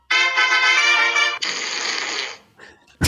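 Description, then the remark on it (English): A loud fart sound effect played by an Alexa smart speaker on request: a steady, buzzy blat lasting over a second that breaks into a longer raspy sputter, trailing off before a short sharp burst at the end. “So Alexa, play a fart.”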